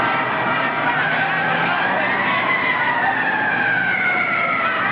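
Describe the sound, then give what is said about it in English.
The wailing siren of a fire engine on its way to a fire rises and falls steadily over a constant wash of street noise, loud. “It's a fire engine. There's a fire somewhere.”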